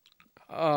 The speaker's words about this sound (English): Down the hatch. Chew it. I'm so nervous.